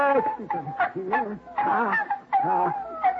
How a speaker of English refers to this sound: Puppies, darling. Yes, sir. Six of them. Yes, well, that little rascal. Puppies. So that's why she disappeared, huh? To have her family.